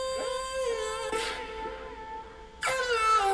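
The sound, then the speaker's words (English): A rough, distorted vocal ad-lib in a song's second verse, processed with what sounds like distortion or an amp and rougher than the lead vocal, wails with sustained gritty notes swelling in two louder bursts against a steady musical backing. “Sounds like it's got like some sort of distortion or amp or something on it.”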